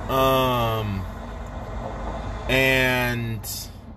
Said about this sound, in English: That's a Gardner truck.